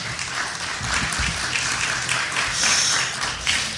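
A crowd applauds steadily, a dense wash of many hands clapping at once, holding a fairly even, loud level throughout with no voices standing out.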